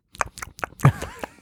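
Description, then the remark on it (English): Wet, sticky chewing on caramel, a run of five or six smacking mouth sounds in an uneven rhythm, with a brief squelchy stretch in the middle and no talking. “I'm chewing on the caramel.”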